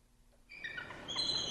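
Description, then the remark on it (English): Shrill, chattering calls of eagles in Unalaska break in after a brief quiet moment, a run of high piping notes that keeps going and grows a little louder toward the end, with no one talking. “A viral TikTok video recently brought Unalaska eagles to screens around the world.”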